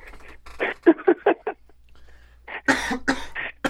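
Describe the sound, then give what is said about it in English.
A string of sharp coughs comes in two bursts: several quick hacks first, then after a short pause a louder, harsher run of coughing. “That accent made me cough.”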